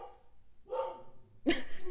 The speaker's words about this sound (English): It's my dog in the background.